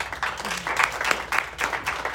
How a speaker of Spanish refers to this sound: Y recibimos también, y le damos un aplauso, por favor,